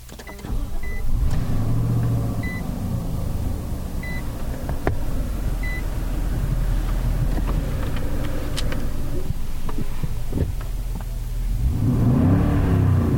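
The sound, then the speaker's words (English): A car engine, in a Platinum Reserve trim car, cranks to life with the mic on the center console as people get in, then revs up and down several times in deep rising-and-falling surges, settling to a steady idle between bursts while a soft chime beeps repeatedly in the background. “I just started up and revved it a few times.”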